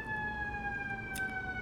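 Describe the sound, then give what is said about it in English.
A fire truck siren wails steadily on a high held tone whose pitch sinks slowly as it passes by, over a low rumble of traffic, with a brief hiss near the end; a fire station is right there. “Whenever the fire truck goes by and I'm like on the phone with my mom, she's like, "Do you need to go?”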